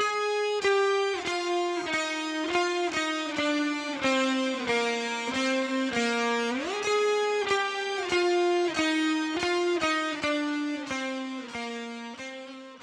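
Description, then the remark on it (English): Several electric guitar parts play together: a guitar played with an ebow, a distorted guitar, and the same distorted part pitch-shifted an octave higher, in a thick, buzzing melody of sustained notes with a bend near the middle, loud, with no voices. “And here's what they sound like all together.”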